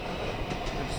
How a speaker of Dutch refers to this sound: Dit is een trein die komt terug van Duitsland. Die komt uit Boende. Oorspronkelijk aan de lijn vanaf Leer naar Groningen.